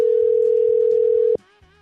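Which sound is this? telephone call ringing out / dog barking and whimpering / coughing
telephone call ringing out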